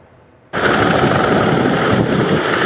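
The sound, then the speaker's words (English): Helicopters spraying the herbicide glyphosate over forest clear cuts south of Prince George, British Columbia, roar in abruptly after a brief quiet moment, their loud, rapid rotor chop holding steady and unbroken to the end, with no voices. “This is video shot by anti-spray activists who say these choppers were spraying the herbicide glyphosate on forest clear cuts south of Prince George about 10 years ago.”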